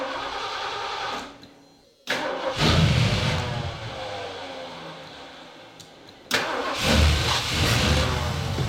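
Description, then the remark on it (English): An old car called Clyde, which had spent the winter in the Florida Keys, sputters, briefly cuts out, then roars back to life and revs loudly, surging again a few seconds later with a rough, rumbling idle between bursts. “This is Clyde. He had spent the winter basking in the tropical heat of the Florida Keys, and it was time for him to follow the birds and migrate north.”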